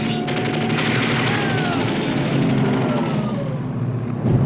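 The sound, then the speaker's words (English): Two planes flying low over the water fire machine guns at a yacht: loud, sustained bursts of rapid gunfire blend into a heavy roaring aircraft engine drone with rising and falling whine, continuous for several seconds without any talking. “They just striped the hell out of that yacht.”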